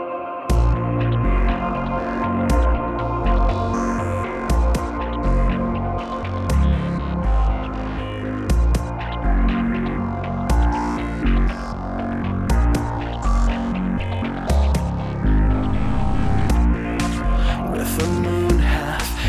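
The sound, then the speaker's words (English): An electronic song plays loud and continuous, with layered synth tones over a steady, punchy beat marked by regular sharp hits throughout. “it's time to switch genres again as we go into the music of the electronic artist … and a fabulous song called …”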